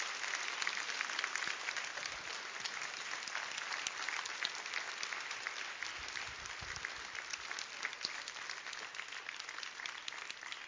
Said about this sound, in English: Let's give them a standing ovation. They hear the criticism, the complaints. Let's give them a standing ovation this morning.